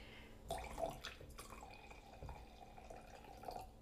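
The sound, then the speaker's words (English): Liquid is poured into a glass, a steady trickling splash with a few gurgling surges, heard on its own without any talking. “I'm going to pour a little more.”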